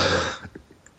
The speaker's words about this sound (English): Bless you.